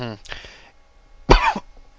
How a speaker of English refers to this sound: Excuse me. I forgot to hit the cough button on here.